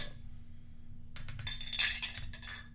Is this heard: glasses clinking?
yes